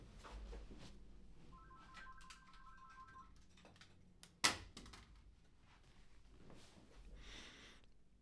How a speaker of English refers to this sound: My phone was ringing, so I just got up and unplugged it.